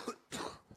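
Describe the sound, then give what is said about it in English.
A short, breathy sneeze: a brief intake burst followed by a louder, harsher explosive blast that fades quickly, with no talking. “Bless you.”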